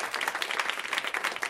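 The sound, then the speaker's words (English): A comedy show audience applauds the comics steadily, many hands clapping in a dense, continuous patter at moderate volume with no voices standing out. “They can hear you. Clap for them.”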